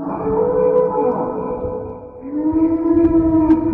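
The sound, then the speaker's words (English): A Brachiosaurus call built from whale song and donkey sounds, the whale making the higher-pitched parts: a loud, sustained, mournful moaning tone that dips, then rises into a brighter, drawn-out wail, with no talking. “Brachiosauruses are all donkeys and whale songs combined.”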